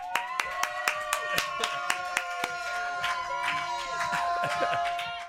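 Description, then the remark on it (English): The control room of The Graham Norton Radio Show on Virgin Radio claps for Rangan Chatterjee for about five seconds, first in sharp, evenly spaced claps, then thickening into looser, overlapping applause, with a steady musical tone running underneath. “Control room round of applause for Rangan Chatterjee.”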